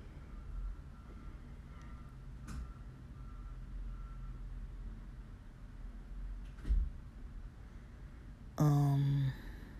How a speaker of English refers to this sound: I think they were knocking next door, because I just heard them close the door.